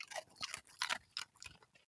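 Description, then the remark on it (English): A female pet crunches and chews a treat in front of a microphone: several crisp, quick bites in an uneven rhythm, quiet, with no voices. “people want to hear what she sounds like when she's eating them”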